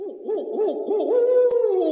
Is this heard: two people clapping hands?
no